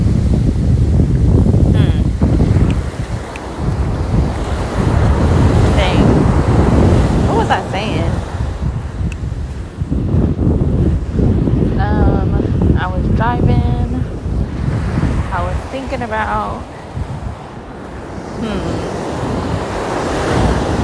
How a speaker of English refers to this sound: In the meantime, while I'm standing here trying to remember, you guys can just listen to the waves, because I for sure forgot.